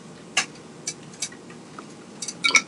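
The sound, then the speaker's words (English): Someone takes a drink of water from a glass: a few soft, scattered clicks and light clinks, with a small cluster of sharper taps near the end, over quiet background hiss and no talking. “Excuse me, I'm going to have another sip of my water here.”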